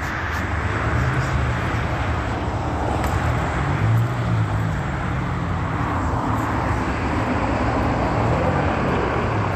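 Steady, dense roar of backed-up road traffic near the 110 heading north fills the whole stretch, a constant low rumble with gentle swells as cars pass by. No voices are heard.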